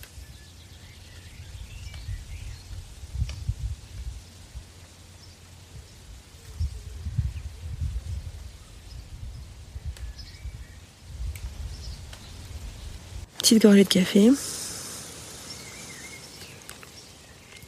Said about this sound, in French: Allez, on écoute un peu les petits oiseaux, ça fait du bien.